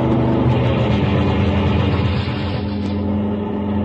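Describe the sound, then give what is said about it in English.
A car engine roars loudly as the car rounds a bend and comes fast down a highway, a steady drone with a low rumbling hum that barely changes over a few seconds, with no voices. “another car rounds the bend and comes down the highway fast.”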